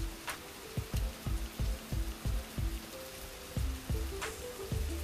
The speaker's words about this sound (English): It feels really good out here in this rain, really doing something to my soul, man.